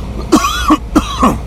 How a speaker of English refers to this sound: I'm going to cough, I'm sorry.